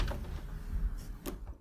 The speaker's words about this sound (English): Here I opened wide the door.